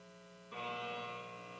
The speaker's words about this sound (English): I was a mechanic apprentice in a company which repaired motorcycles, cars, trucks, semis, up to big army tank. So every morning at 7, there was an annoying buzzer.